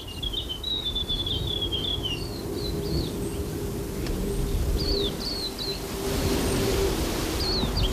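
A grey warbler sings high, thin, wavering trills in several short phrases, clear against a steady low rumble of an airliner droning in the background.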